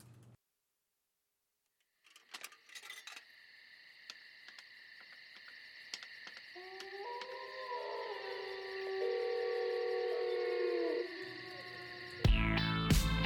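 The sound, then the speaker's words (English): A steady, high-pitched drone of crickets chirping runs through a piece of music, with scattered clicks and soft gliding synth tones rising underneath before a louder burst at the end. “Well, I liked the crickets.”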